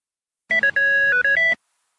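A short electronic notification chime plays alone, a quick run of four or five bright tones in about a second, clear, with no talking.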